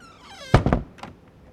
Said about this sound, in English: I'll just close this door behind me.